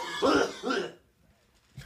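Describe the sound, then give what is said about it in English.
Two quick, harsh coughs in close succession, loud, followed by near silence with a faint breathy sound at the end. “You mastered the cough.”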